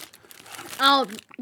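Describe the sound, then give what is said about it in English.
Paper rustles and crinkles as it is moved away from food crumbs, a soft scratchy shuffling, broken up by a loud, drawn-out vocal sound from a young child partway through. “No, not on the paper. Let's move the paper.”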